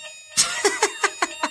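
A fire alarm test chime sounds as a rapid string of six bright, evenly spaced tonal pulses, each sharp and ringing briefly, over a low background hum.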